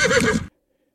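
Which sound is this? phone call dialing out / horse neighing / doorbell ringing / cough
horse neighing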